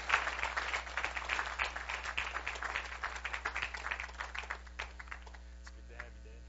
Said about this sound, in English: And I'm going to invite Pastor Bob at this time. If you would give him a round of applause, please, that would encourage him. That would encourage him.